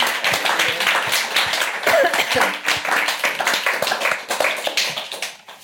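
An audience breaks into a round of applause, a dense, steady wash of many hands clapping that holds strong for several seconds before tapering off at the end.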